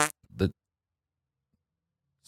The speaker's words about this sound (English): Sorry, I have the fart extension on Zoom conference. Sorry, let me just disable.